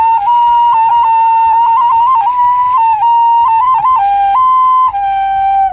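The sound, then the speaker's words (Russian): A clay folk toy whistle is blown in a steady, loud, pure tone around one pitch, with small trills and warbles and a few brief breaks, ending on a slightly lower note. No one speaks. “вот игрушечка у меня, я взяла, тяжело было тащить, но поменьше, а вообще есть игрушки, которые вот прямо гудят.”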